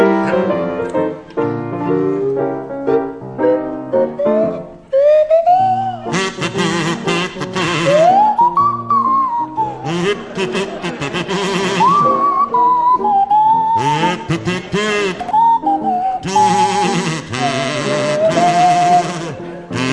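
A buzzy kazoo and a swooping swanee whistle play a jaunty tune together over a steady backing accompaniment, with the whistle gliding up and down between notes throughout.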